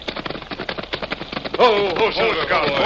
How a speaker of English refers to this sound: The Lone Ranger and Tonto pulled their horses to a halt on the rain-soaked trail a few miles east of Cheyenne.